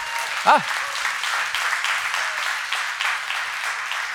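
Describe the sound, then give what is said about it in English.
Steady applause from an audience after preaching fills the whole stretch, a dense crackle of many hands clapping at an even level, with a brief voice rising in a short cheer near the start. “I'll just clap for that word myself.”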